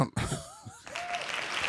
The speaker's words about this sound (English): Hand claps.